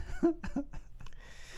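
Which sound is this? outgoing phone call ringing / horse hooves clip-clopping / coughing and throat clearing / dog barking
coughing and throat clearing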